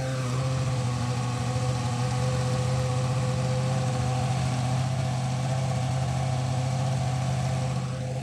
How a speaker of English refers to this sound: Is the sound of the Marlboro-sponsored Ferrari F1 car equipped with a naturally aspirated V8. Joyous, joyous noises. Deafening noises as well, I should say.